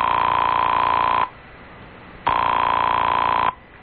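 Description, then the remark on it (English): A telephone rings on the line during a call placed from a doctor's house in Austria: two long, steady buzzing rings heard through a phone earpiece, thin and telephone-filtered, separated by a short quiet pause, with no one speaking. “She was also kind enough to let me make a phone call on my credit card.”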